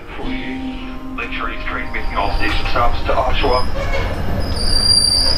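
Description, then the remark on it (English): A moving train to Pickering, Ontario, rumbles steadily, its low roar swelling slightly louder, with thin high-pitched wheel squeals and humming tones riding on top and faint indistinct voices in the mix. “I'm on a train to Pickering, Ontario, to pick up the memoir”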